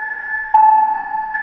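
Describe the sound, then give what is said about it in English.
Sustained, bell-like chime tones, a leitmotif representing the character Nora Evers, ring steadily at a mid-high pitch, with a fresh, slightly louder strike about a third of the way in. The shimmering notes hold and overlap, with no voices. “Whenever she has a significant role, even if she's not physically present in the scene, I use these chimes to create a sense that she's always there, even if she's not physically in the room.”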